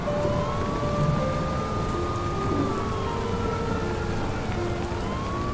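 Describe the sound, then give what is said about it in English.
Heavy cold rain pounds down on the streets of Saga in a steady, dense hiss that never lets up, with a faint wavering whine, like a siren, drifting over the downpour. No voices. “the cold water that pounds on your skin hisses as you sprint through the streets of Saga.”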